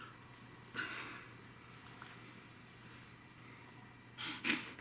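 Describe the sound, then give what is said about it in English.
Heavy, snorting breaths close to the microphone, with a sharp huff near the start and a louder double snort at the end, separated by quiet breathing and a steady low hum. “Breathing on me like you're a goddamn horse.”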